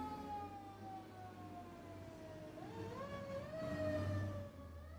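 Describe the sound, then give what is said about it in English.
An ambulance siren wails past over steady traffic rumble, its rising and falling tone bending in pitch as it approaches and moves away, fairly loud and with no talking. “Well, just like we came into the world, we're exiting it with a ambulance situation.”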